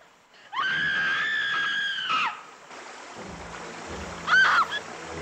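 A woman who has fallen into a river and is drowning: her long, high scream rings out over rushing water, then breaks off into splashing and a second shorter cry amid the churning river noise.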